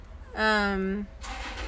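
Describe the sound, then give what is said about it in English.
A truck outside makes a loud, steady droning tone for about a second, then breaks into a broad rushing rumble as it keeps running. “No, there's a car. No. Fucking car. It's a truck.”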